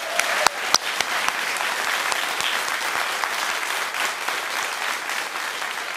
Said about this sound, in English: Applause for all of them.